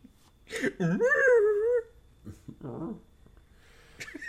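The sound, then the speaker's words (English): A person's voice imitates whale song: a loud, drawn-out wavering moan that rises and dips, followed by a shorter warbling call and soft breathy noises. “That's my whale song.”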